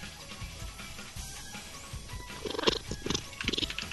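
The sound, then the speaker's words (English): A male domestic cat purrs loudly while being petted, a continuous rumbling with rhythmic pulses that swell and strengthen toward the end, with no voices present. “No, I'm actually petting the cat, and he's purring very, very loudly.”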